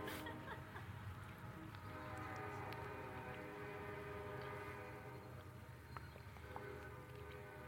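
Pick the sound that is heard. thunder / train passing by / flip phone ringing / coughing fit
train passing by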